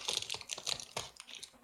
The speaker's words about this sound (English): I don't think that's chewing. I was opening the plastic bag that has my licorice in it.